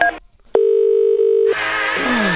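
A brief electronic telephone keypad beep as a button is pressed during a call to AIR's customer service line, a short pause, then a steady, loud, mid-pitched tone held for about a second, followed by a burst of hissy noise with a falling whine.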